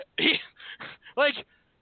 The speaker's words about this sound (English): My dog is pissed off and he's speaking.